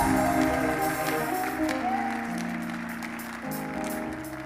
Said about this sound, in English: Come and clap your hands and praise him in the name of Jesus.